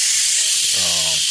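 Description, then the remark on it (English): A voice imitates a fire extinguisher blasting: a loud, steady, breathy hiss held for over a second, with a brief voiced tone sounding under it partway through. “And I was hiding for ages with this fire extinguisher in his toilet. And he's come in and then he's opened the door.”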